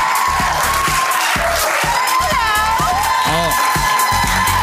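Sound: crowd cheering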